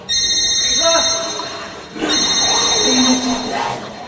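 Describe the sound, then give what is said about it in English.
A cell phone rings with a shrill, steady electronic tone that holds nearly unbroken for about four seconds, briefly dipping midway, while indistinct voices murmur underneath. “How do you even have service down here? I just joined Verizon!”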